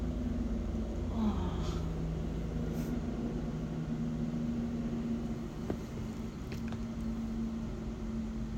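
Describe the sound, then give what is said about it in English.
A helicopter flying overhead makes a steady, droning engine hum with a low tonal whine throughout, with a few faint clicks but no voices. “It doesn't look like a plane. Helicopter, maybe? Yeah. Helicopter. Definitely.”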